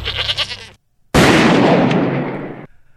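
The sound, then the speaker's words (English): A goat gives a short, wavering bleat, then after a brief silence a loud, sudden blast erupts and rumbles away over about a second and a half. “Here, little goaty, goaty, goaty. Here, little goaty, goaty.”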